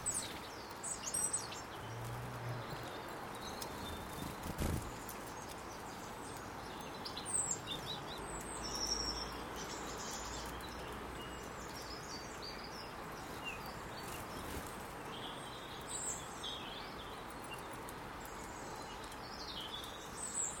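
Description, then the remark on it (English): Goldfinches twitter from a nearby bush, a steady stream of light, tinkling chirps and trills rising over a constant hiss of outdoor background noise, fairly quiet throughout with no talking. “There's goldfinches singing in the bush nearby.”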